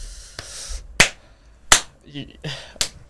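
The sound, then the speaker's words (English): Sharp, bright hand claps, made to sync the audio, crack out three or four times at uneven intervals, each a loud, brief smack, with a short murmur of voice between the later ones. “Clap to sync the audio.”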